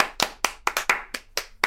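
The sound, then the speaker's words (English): A few people clap briefly, with about eight sharp, bright claps in an uneven, loosely overlapping rhythm. No one talks over them, and the claps stop after under two seconds. “clap because it seemed rude to clap for myself.”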